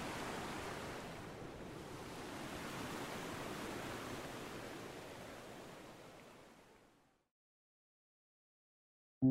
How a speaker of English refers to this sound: I plunge into the creek, letting the cold, rushing water return me to my body, push me along the rocks, and engulf me before I come up for air.